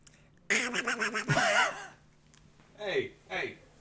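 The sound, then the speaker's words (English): A person imitates a duck with a burst of raspy, nasal quacking sounds, followed by two shorter, higher squawks that sweep downward, loud and without other talk. “That was a very good duck voice.”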